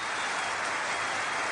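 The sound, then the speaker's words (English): A short applause sound effect played as a cue by a show's producer: dense crowd applause, many hands clapping together in a steady, hissy wash that holds level for about a second and a half, with no voices. “Tristan, can we have like some sort of applause cue for Sam?”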